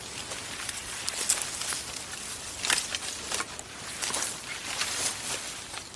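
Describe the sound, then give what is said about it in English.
Trees rustle steadily in the wind, a dense, hissing wash of leaves with brief louder swells and crackling bursts, continuing without pause and with no voices. “Or we didn't want a clip of just the trees like sighing and rustling. There's a lot of like potent rustling.”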